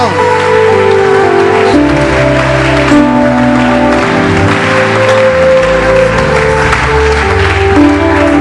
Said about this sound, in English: Put your hands together. Oh, keep clapping.